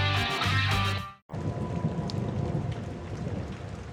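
A short burst of music cuts to a moment of silence, then steady rain takes over, a dense, even hiss with soft patter and no voices.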